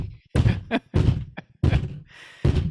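Someone pounds on a table with four heavy, booming thumps, loud and close, spaced unevenly with short pauses between them.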